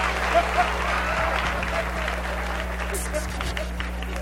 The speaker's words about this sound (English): Women, you should be clapping, especially if you're single.